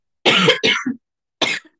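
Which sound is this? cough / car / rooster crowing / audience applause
cough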